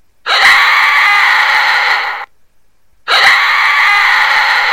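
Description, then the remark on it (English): Two long, piercing screams coming from the woods, each lasting about two seconds, separated by a brief silence. Loud, shrill and sustained, they carry alone without any talking. “As this is taking place, the men, all hearing a chilling, piercing scream coming from the woods.”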